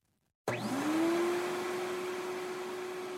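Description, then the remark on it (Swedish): A vacuum cleaner switches on abruptly as a mother pulls it into a bedroom on a summer morning, its motor whining up in pitch before settling into a loud, steady roar. No one speaks. “Jag vaknar upp till dammsugarnas uppslukande ljud som morsa drar in i rummet.”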